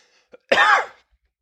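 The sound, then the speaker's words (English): A single rough cough bursts out for about half a second, preceded by a faint intake of breath, with near silence before and after. “Sorry, just had to have a cough.”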